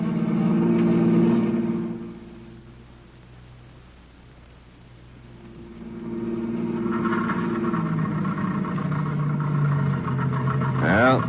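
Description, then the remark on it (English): A car engine sputters as it runs out of gas, its loud rumble sagging and faltering for a few seconds before coughing back into an uneven, straining run. “The end of the gas.”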